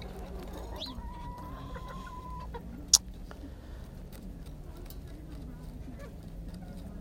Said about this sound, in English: so cute as a mini cock, mini rooster. Big old feet. Feet are bigger than him. But anyway, yes, good morning to you, Manly. Manly, the mini chicken.